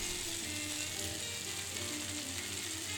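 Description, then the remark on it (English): Bacon sizzles steadily on an open panini press, a dense, continuous hiss and crackle with no pauses and no voices. “Bacon Roasting on a open Panini Press”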